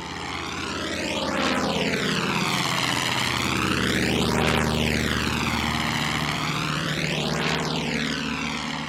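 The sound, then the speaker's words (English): A Russian propeller plane circling overhead, spotting for its gunners, drones steadily, its engine buzz swelling and fading in slow, sweeping waves. It is loud and continuous, with no voices. “Finally, they heard a motorized buzzing noise above them. They looked up and spotted a Russian plane circling from above, spotting for its gunners.”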